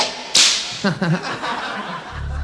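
A single loud, sharp whip crack snaps out near the start, followed by a brief burst of chuckling voices and a low rumble at the end.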